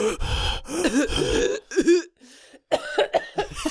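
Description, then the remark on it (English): Someone gasps and heaves for air after holding their breath, a run of ragged, throaty breaths with a cough-like catch, a brief quiet pause, then more panting bursts. “I wasn't breathing that whole time.”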